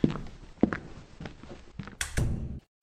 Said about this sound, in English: Footsteps and a door opening is heard as Chief Shepherd leaves the bar.